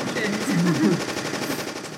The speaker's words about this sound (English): Immediately, the air fills with machine gun fire.